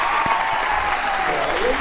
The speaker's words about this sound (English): That's what I'm sure the Alamo in Austin sounded like tonight, with everyone cheering like crazy.